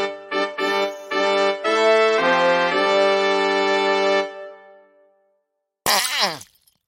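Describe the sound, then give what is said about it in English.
A wavering, held musical tone plays for several seconds and fades to silence, then a short, loud, sputtering wet fart bursts out near the end. “Yeah, it really is begging for a fart.”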